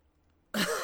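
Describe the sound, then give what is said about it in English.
After a short stretch of near silence, one abrupt, loud cough bursts out, rough and throaty, like a sharp clearing of the throat. “immediately turns off his sound because he's got a cough.”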